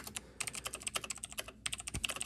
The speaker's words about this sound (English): I'm just typing it out to see if it'll fit here. Yeah. It could be that it's all dumb and... Let's just type it out.